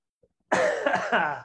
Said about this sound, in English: All right, I'll put it on mute next time I need to cough.